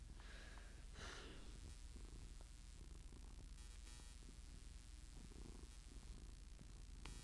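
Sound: cat purring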